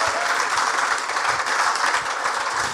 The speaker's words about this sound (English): But could everybody here please give a round of applause for these guys for coming and talking with me?